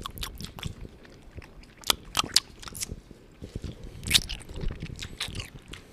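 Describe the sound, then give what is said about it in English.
Chewing on pumpkin caramel, with wet, sticky mouth sounds and irregular crackly clicks repeating steadily over several seconds, loud, no talking. “Sorry, folks, we're chewing on caramel.”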